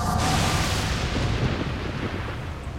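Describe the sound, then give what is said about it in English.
A sharp, loud crack of thunder with a flash of lightning breaks out and rolls into a deep, sustained rumble that slowly fades over a few seconds, with no voices. “A flash of lightning shook Satan out of his reverie.”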